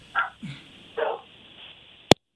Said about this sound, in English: We heard the dogs barking in the background.